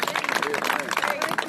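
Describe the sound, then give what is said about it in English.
A church audience at a day-of-prayer service claps their hands to the Lord together in a steady, dense wash of overlapping handclaps, with raised voices and cheering mixed in throughout. “Come on, let's clap our hands to the Lord over this.”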